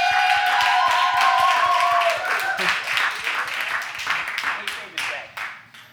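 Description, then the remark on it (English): An audience at a Portland comedy show bursts into sustained applause as a comedian is introduced, dense crackling claps mixed with cheering voices and whoops at the start, then the clapping thins out and fades over the last couple of seconds. “So everybody, give a big round of applause”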